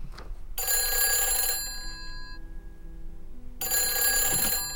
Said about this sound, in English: It wasn't a moment later that the phone rang.